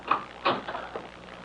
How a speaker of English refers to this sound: Oh, your bedroom door is closing. That's all I see. It's probably a draft catcher.